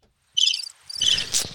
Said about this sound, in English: Crickets. You heard that? Yeah, that's what I wanted to show you. I saved that one a long time ago.